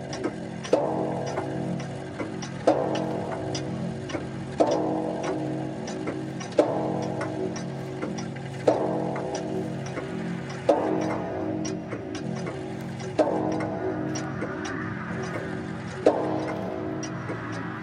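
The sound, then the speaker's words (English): A clock strikes a series of about eight resonant chimes, one roughly every two seconds, each tone ringing on and overlapping the next, with steady ticking running faintly underneath. “And then, after the lapse of 60 minutes, which embraced 3,600 seconds of time that flies, there came yet another chiming of the clock.”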